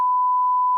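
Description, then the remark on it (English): A single steady electronic tone held for just under a second, the classic bleep used to censor a word, clean and alone with no voices around it. “I want to hear beep whole way through, bro.”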